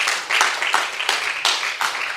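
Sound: audience clapping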